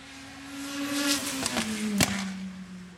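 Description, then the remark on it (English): A Ford Capri historic racing car engine roars steadily, holding a strong droning note with a couple of sharp bursts and gear-shift blips, no voices present. “It's another Capri. Have a listen to this.”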